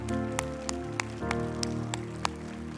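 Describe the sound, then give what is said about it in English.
A church audience claps in a dense, rain-like patter, with a few sharper, louder claps popping out at irregular moments, over steady sustained keyboard chords. “Come on, let's clap and celebrate with them.”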